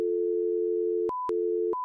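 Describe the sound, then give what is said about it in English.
An electronic beep tone used as a stand-in intro before the main show: a long steady low-pitched hum, cut by sharp clicks into short segments, with a thin higher-pitched beep sounding in the gaps. No one speaks. “Well, there's a real intro coming up in a minute, so I'll just make like a beep beep noise and then it'll go into the main show.”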